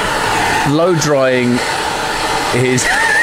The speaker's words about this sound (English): That's a hairdryer Johnny's got out.